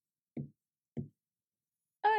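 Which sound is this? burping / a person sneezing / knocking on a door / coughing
knocking on a door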